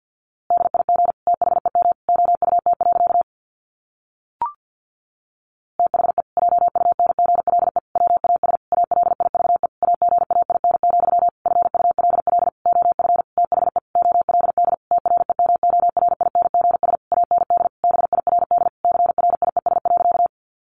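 Rapid Morse code sent at 50 words per minute: a single steady mid-pitched tone keyed into quick dots and dashes, running in dense bursts with short gaps and one longer pause near the start marked by a click.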